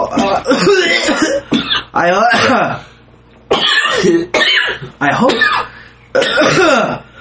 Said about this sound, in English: Coughing fit